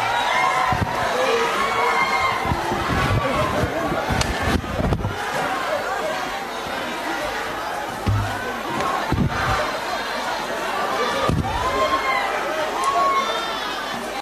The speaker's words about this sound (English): Instead, EFF MPs broke into a chant calling on the sergeant at arms to remove President Zuma. Parliament's Protection Services members stormed the house and chaos followed as water bottles, handbags and EFF's hard hats flew.